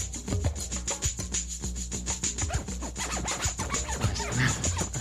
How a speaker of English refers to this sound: Digital scratching is included, so any sample can be dragged onto the scratch window, and then using the mouse clicking, you can scratch back and forth through it. And it never jumps.